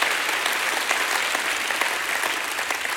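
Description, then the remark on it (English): A church audience applauds, giving God a hand clap, with dense, sustained hand clapping that fills the whole stretch, steady and fairly loud, with no voices standing out. “Give God a hand clap.”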